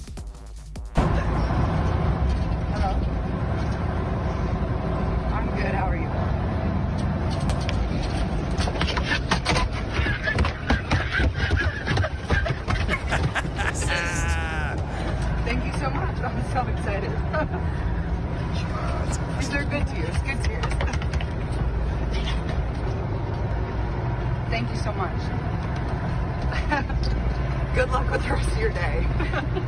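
A steady low engine rumble fills the inside of a moving bus carrying Gotham FC soccer teammates, with muffled, indistinct chatter and a few brief clatters mixed in.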